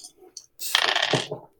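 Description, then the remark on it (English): Dice clatter and tumble across a hard tabletop in a quick burst of rattling clicks, fairly loud, settling after about a second, rolled for a strength roll in a game. “These badger dice are failing me.”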